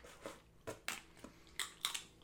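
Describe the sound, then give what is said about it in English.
Crisp crunching as seeds are cracked and chewed, with about seven sharp bursts of crackle in an uneven rhythm and no talking. “Now, are you swallowing the seed?”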